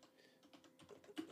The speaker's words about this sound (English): But while he's typing that up